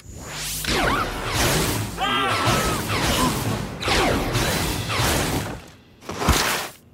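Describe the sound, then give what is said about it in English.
A cartoon heat cannon, a hairdryer modified into a prototype nuclear fusion heat cannon, fires in a loud series of roaring, whooshing blasts with crashing impacts and a brief warbling electronic whine, ending in one sharp final burst. “I made a few modifications. It's now a prototype nuclear fusion heat cannon.”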